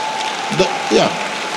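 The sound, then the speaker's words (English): A church audience applauds steadily for pastors as they sit down, the dense clapping forming a continuous wash of sound, with a couple of brief voiced calls rising over it. “Let's clap for them as they sit down.”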